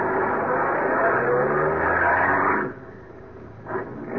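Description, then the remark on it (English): A car is started and pulls out on an empty road late at night, its engine roaring loudly, pitch climbing as it accelerates for about two and a half seconds, then the noise drops off abruptly to a quieter rumble. “Slowly, I overtook him, pulled alongside.”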